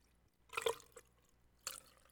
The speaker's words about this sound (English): But I did bring I put some rocks in a mason glass here. So we're going to re-engineer this fucking Budweiser. All right, so let me get some of the... All right, first I'll pour in some of the Budweiser.